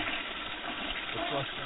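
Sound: toilet flush sound effect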